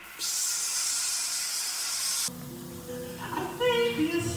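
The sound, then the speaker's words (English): A steady aerosol spray can hisses for about two seconds, loud, then cuts off abruptly as tonal, voice-like sounds take over. “Well, I don't know if it works through the TV screen, but I'm going to give it a shot.”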